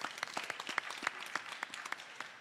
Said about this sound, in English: Give him a round of applause as well.